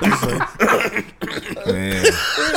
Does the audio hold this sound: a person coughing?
yes